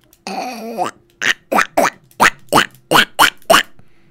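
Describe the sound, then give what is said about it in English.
A voice imitates a duck: a drawn-out nasal honk followed by seven short, raspy quacks in a quick, steady rhythm, fairly loud with nothing else behind them. “That's a duck.”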